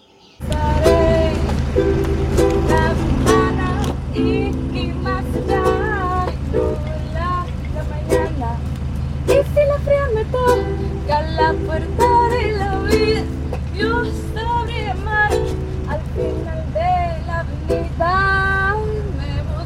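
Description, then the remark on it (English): A young woman sings a melodic Spanish-language song over the steady low rumble of a moving bus, her voice clear while the engine drones continuously beneath. “So I would like to send you out with this random girl singing on the bus.”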